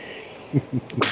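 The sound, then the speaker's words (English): A sudden, sharp sneeze bursts out at the very end, preceded by a couple of soft, short breathy sounds over a steady background hiss. “Bless you.”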